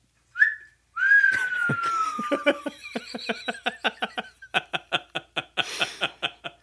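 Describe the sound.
A person whistles an imitation of birdsong: a short high note, then a long sliding whistle, breaking into a rapid series of sharp chirps and trills that grow evenly rhythmic toward the end.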